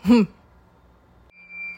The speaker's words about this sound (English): So, the antics of when your alarm trips off.